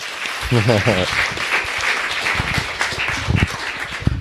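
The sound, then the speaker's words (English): An audience breaks into applause after a question from the floor, a dense wash of clapping from many hands that continues steadily for several seconds, with a brief voice heard near the start. “Round of applause.”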